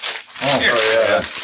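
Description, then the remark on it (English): Paper rustles and crinkles as character sheets are handed out for a role-playing game, a brief burst of handling noise that keeps going softly beneath a voice talking. “Yeah, everybody need paper?”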